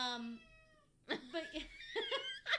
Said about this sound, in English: Speaking of Little Sebastian. Yeah, so our cat's back. Little Sebastian.